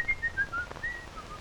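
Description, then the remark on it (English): Someone whistles a lilting tune, a string of clear, pure notes stepping up and down in a steady rhythm, soft, with no talking over it. “The whistle is a nice touch.”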